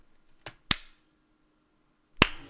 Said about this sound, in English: Yeah, and then you all hear just a slow clap.